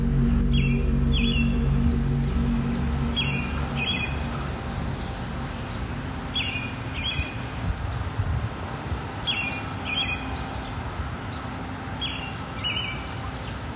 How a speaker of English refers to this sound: That bird is feeling it too.